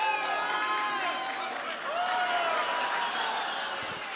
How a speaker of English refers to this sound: Some of you booed.